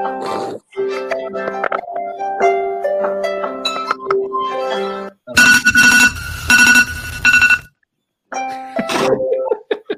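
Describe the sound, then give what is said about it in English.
An Android phone alarm ringtone plays a bright, steady electronic melody, then gives way to several loud, harsh pulsing bursts. After a short silence, a voice is briefly heard. “That alarm for the Android.”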